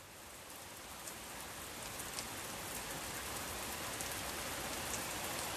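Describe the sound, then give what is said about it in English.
Heavy, torrential, thunderous rain pours down steadily in a dense, unbroken hiss, with sharp drops spattering on a hard surface. No voices are heard. “there was one day where there was beautiful, torrential, just thunderous rain. Phenomenal rain.”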